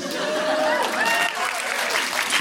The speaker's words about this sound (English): I feel you shouldn't applaud that, but I understand why you do.